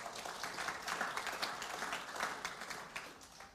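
A crowd applauds as a guest is called out, a steady wash of many hands clapping, dense and sustained for several seconds at moderate loudness, with no speech over it.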